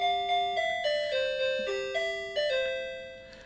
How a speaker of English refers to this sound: You're the gayest doorbell I've ever heard in my life.